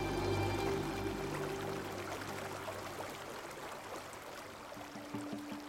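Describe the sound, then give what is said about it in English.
Rushing water of the River Wharf surges steadily through the narrow channel of the Bolton Strid, where the two riverbanks come close together, a continuous broad roar with no voices, joined briefly by faint tonal hums at the start and end. “Legend has it that everyone who falls into the river here dies.”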